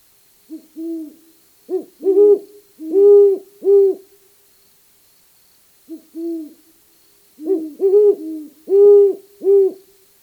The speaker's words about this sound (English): That would be the duet of a pair of great horned owls, the male deeper in pitch and the female higher in pitch.